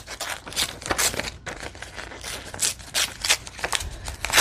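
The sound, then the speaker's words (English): Brown paper is torn by hand, a series of raspy ripping bursts and crinkly rustles repeating irregularly over a few seconds, with no one speaking. “Maybe I'll just tear some of you out.”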